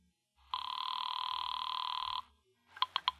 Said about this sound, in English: Now pick up the receiver. No, wait. I'll do it. Now, take the phone. Tell him. It's ringing. Take it.